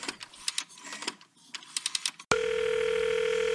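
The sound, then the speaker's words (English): A quick run of soft tapping clicks, like buttons being pressed on a phone to call someone back after a hang-up, then a loud, steady telephone dial tone starts abruptly and holds unbroken to the end. “Did he just hang up on me? Oh, I am calling him back.”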